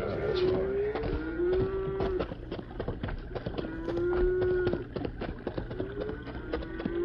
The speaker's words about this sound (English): You hear that herd of cattle?